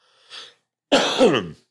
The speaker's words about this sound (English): The cough, though.